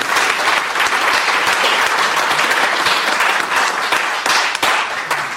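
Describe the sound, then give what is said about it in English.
A crowd applauds steadily, a dense wash of many hands clapping at once, loud and sustained for several seconds with no one speaking over it. “So please join me in applauding them for their help and support for this.”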